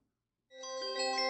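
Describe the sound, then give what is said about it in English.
After a brief silence, a brass bell starts ringing. The bell is a brass circle with a clapper attached by a small rod, fixed above a door. Its bright metallic overtones shimmer and sustain as the clanging grows steadily louder to the end. “The bell was the summons to the man with no tongue. It was a brass circle with a clapper attached by a small rod fixed above the only door.”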